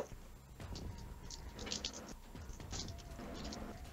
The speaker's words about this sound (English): So, give it all you got in that initiative roll and start thinking before you roll those dice.